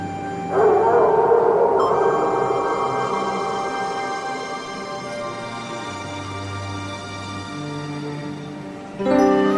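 A wolf howls in long, sustained, wavering tones that glide slowly in pitch, loud, with a few layered voices blending before the sound cuts off near the end, as it walks off into the woods.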